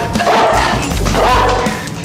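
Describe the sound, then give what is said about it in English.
A big dog, hidden nearby, barks and snarls menacingly, a loud, rough, continuous outburst with a deep growling undertone over about two seconds. “Hidden somewhere nearby, a big dog barked and snarled menacingly.”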